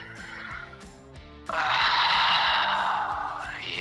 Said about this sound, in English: He was breathing a lot. I felt like he might have been on the can or something like that.